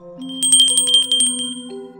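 A small desk bell at the desk of a bookstore is struck rapidly around ten times in a quick burst, its bright metallic ding ringing clear with a lingering tone and no voices.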